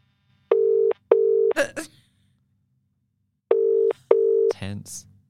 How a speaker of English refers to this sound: So why don't we just ring him randomly? What, to find out where he is? Yeah, so let's just see where he is and what he's doing. All right. Imagine if it's ringing now.